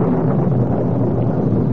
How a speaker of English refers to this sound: Is that thunder? I think so.